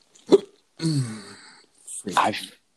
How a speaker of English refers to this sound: I can feel your pain right now. Yeah, I hate hiccups.